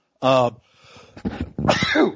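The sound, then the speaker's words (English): A single loud sneeze with a voiced intake at the start and a sharp, breathy burst at the end, standing alone without any talking. “Bless you. Sorry about that.”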